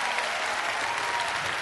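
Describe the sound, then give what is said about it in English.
An audience claps together in a dense, sustained burst of applause, steady and fairly loud throughout, with no clear individual rhythm and no speech standing out above it, giving a clap offering to the Lord during a church service. “If you believe the curse of poverty is broken, give the Lord a clap offering.”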